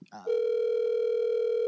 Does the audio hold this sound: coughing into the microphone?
no